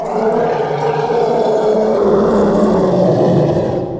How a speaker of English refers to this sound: Not a lot of people even know elephants make this sound, but they do growl from time to time, and they produce this insane roaring.